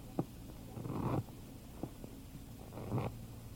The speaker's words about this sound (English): Shuffle the cards, Mr. Trumbo.